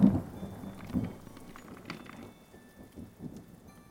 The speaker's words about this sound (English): The rain poured heavily outside as lightning began to strike.